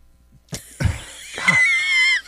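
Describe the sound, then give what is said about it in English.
A burp after drinking Pepsi: a few short, rough gulping bursts, then a longer strained belch that turns squeaky and high-pitched before cutting off, with no talking around it. “It needs to be burped.”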